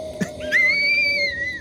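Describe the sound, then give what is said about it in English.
A single clear, high whistle slides up and then holds a steady pitch for about a second before cutting off, with a faint low hum underneath and no talking. “Oh, nice whistle.”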